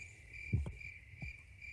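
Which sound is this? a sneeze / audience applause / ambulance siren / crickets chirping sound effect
crickets chirping sound effect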